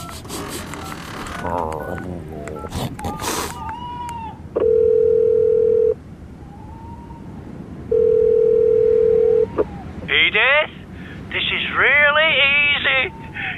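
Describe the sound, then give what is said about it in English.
A telephone is dialed to call Edith, with quick beeps and clatter, then a steady dial tone sounds in two long, loud pulses, followed by high, chirpy, meow-like vocal sounds. “I'll phone Edith so she knows we're okay.”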